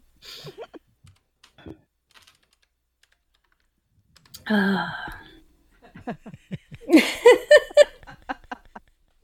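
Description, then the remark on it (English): Computer keyboard typing: a few scattered keystrokes at first, then two dense bursts of rapid clicking, fairly clear, with no voices, as someone types emoticons. “That's just typing, I guess, his versions of emoticons.”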